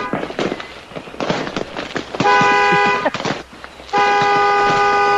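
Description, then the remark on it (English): A car alarm blares in two long, loud horn blasts on a car, with sharp crackling pops of fireworks being let off outside before and between them. “Yeah, he set my alarm off on my damn car.”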